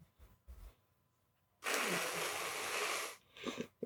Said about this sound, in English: Were you really blowing your nose when I threw that to you? Yes.